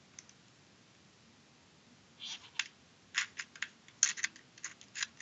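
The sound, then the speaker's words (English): Irregular plastic clicks and clacks, with a few sharper snaps, as a keyboard is connected up to a computer; a quiet start gives way to a busier cluster of clicks with no talking. “So let me connect up this here keyboard.”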